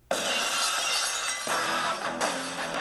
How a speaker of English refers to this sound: This is absolutely iconic because it changed the way if glass broke to me. Whenever people hear broken glass, they just think broken glass.